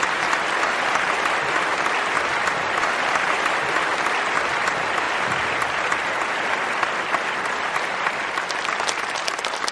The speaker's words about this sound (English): Ladies and gentlemen, let's give another warm applause for Supreme Master Television.